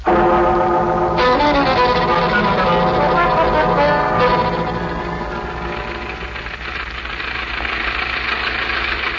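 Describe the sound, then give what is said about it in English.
A bus engine rumbles steadily with a throbbing, knocking idle, loud at first, then easing slightly in level as it keeps running. No voices are heard. “It sure complicates things having her on the bus again.”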